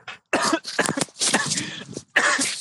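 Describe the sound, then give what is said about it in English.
A loud fit of harsh, raspy coughing, several bursts in quick succession with short gaps between them and a throaty, rough edge. “I'm a cough away from the microphone.”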